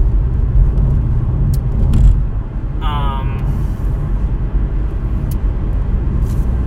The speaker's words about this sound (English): I'm actually, traffic is, like, loosening up. I'm gonna be home soon.